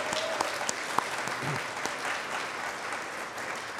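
An audience claps steadily, a dense wash of many hands with a few sharper individual claps standing out, sustained at an even, moderate loudness throughout. The audience is applauding the event's organizer at a first-year event in Iowa City.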